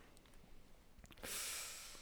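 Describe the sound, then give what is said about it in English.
After a near-silent second with a few faint clicks, a woman gives a sharp, airy intake of breath that rushes in and is held as a soft breathy hiss, like a quiet gasp, during a card reading. No one speaks. “She just gave a gasp.”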